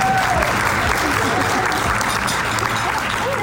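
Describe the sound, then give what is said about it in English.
An audience applauds steadily, a dense, even wash of many hands clapping at a consistently loud level throughout, with faint voices mixed underneath. “Clap up.”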